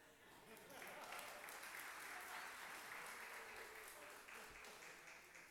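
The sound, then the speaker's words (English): A crowd applauds and cheers steadily, a dense wash of clapping with whoops and shouts mixed in, sustained at full volume for several seconds without any speaking voice over it. “Where's my cheering section?”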